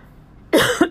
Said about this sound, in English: I don't know what this is with this coughing.